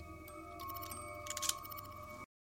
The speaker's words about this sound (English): The sound of her snipping the scissors.